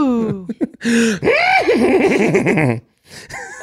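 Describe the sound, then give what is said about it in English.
A man's voice imitates a horse, producing a loud, wavering whinny that rises and falls in pitch with shaky, trilling breaks, followed by a short breathy snort. “That wasn't a sound effect if you're listening at home.”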